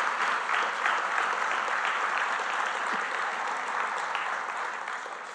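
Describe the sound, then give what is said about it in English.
A church audience applauds the members of the church's core group for their work, a dense wash of many hands clapping at an even level that tapers off slightly toward the end. No one speaks over it. “And as a matter of fact, I would like you to applaud them because of their work.”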